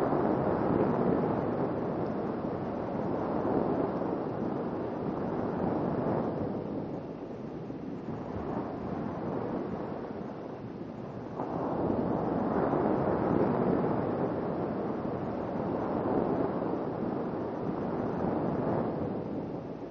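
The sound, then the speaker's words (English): Steady roar of sea waves washing in, swelling and easing in broad surges with a brief lull midway, fairly loud with a windy hiss and no voices. “Beauty of the sea engulfs you.”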